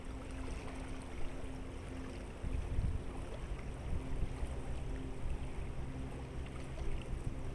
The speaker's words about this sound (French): les vagues clapotent doucement sur la plage, tandis que le vent qui souffle sur la baie vous fouette le visage.